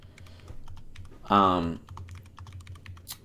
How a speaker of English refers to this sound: But if you have to set it up, try not to do it until after we record, because you can kind of hear the typing kind of loud.